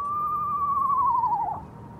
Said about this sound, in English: And it called for 20 minutes. Inches from my face. I was inside the tent. It was outside. David froze and listened as the calls echoed across the water. It was an eastern screech owl, and David could feel it vibrating each time it called out.